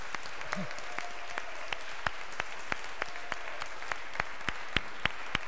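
An Episcopal church audience claps in a steady, even rhythm, sharp hand claps landing about three times a second, fairly soft over a low background murmur, with no talking, giving thanks to God for the calling of a new rector.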